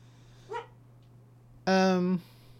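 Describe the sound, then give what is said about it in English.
A female dog lying down gives a brief, soft little woof instead of a full bark, then a louder, drawn-out woof half a second long, over a low steady hum. “She'll lay down, and instead of just doing a full out bark, she does like a little woof.”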